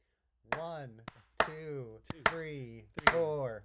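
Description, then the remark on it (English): Five sharp, crisp hand claps land at uneven intervals, some in quick pairs, over sustained humming or sung voices that swell between them. “do our five claps.”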